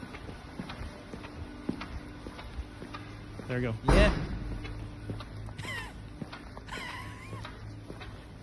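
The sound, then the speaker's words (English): Footsteps walking through a car park, each step giving a short squeak in a steady rhythm, with a louder thump midway and a couple of brief voices speaking over it. “My squeak sounds like as I walk through the car park.”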